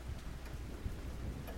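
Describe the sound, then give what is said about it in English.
Steady rain patters intermittently against small high windows at 10 p.m. with a dense, even hiss, while a low, distant rumble of thunder rolls underneath amid lightning. No voices, just the constant wash of the storm. “Rain pelted the small high windows intermittently, illuminated by lightning. Distant thunder clapped.”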